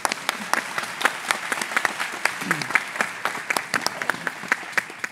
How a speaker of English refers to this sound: and you could all break into applause. We'll see how that works. Well, what I'm going to do now, when this great evening is written down for posterity, this will be the point where there's a square bracket that says applause. So join me.